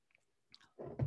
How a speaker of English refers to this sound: So this is Stella Rosa Pineapple. I can't read it. A low alcohol grape wine, maybe something. I don't know. I haven't tried it. How many have you had already? Yeah, I love pineapple, so I thought, oh, why not? So I'm going to take a sip.